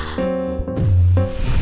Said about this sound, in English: That's the most erotic dice blowing I've ever seen